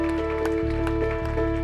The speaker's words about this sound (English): Can you give a clap offering to God? Come on, give a clap offering to God. Give a clap offering to God.